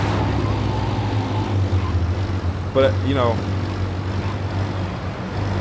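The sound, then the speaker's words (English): A steady, low engine drone of a slower car being driven in a video game hums continuously throughout, with a man talking briefly over it partway through. “All right, now I'm in a slower car.”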